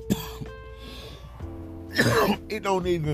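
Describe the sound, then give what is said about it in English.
A single sharp cough from someone driving a car bursts out, briefly loud against a low steady hum, with bits of voice before and after it. “Yeah, I'm driving in my car and I do not have a mask on and I did just cough.”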